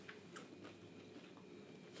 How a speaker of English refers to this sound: So, sorry, I'm chewing. No, you're fine. So am I.